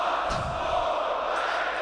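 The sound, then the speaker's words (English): A crowd cheering sound effect: a steady, dense roar of many voices that holds at an even level for a couple of seconds, with no single voice standing out. “Still learning how to set up the crowd there after all these years.”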